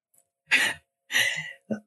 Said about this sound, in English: I'm so sorry I'm coughing, guys. My allergies. I don't have the I don't have Ebola over here. I just have my allergies.